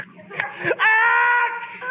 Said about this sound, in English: Good heavens, Bud. Did you hear Costello sneeze? What's wrong with the way I sneeze with a little thing like that? What's wrong with it? What's wrong with it? Well, if you have to sneeze, why don't you sneeze with your mouth closed?